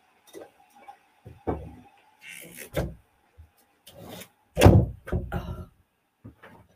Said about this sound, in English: Let me just shut that door.